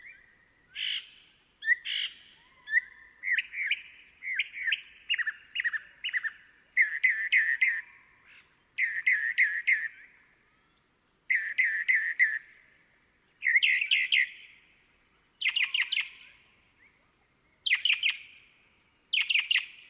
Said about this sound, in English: Mockingbirds are also abundant here, their varied utterances often dominating the desert soundscape.